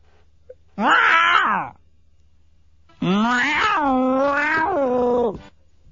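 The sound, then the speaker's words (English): A house cat named Sadie Lou lets out two loud, drawn-out wailing meows, the first short and rising, the second longer and wavering, separated by a brief pause. “Go to bed, Lou.”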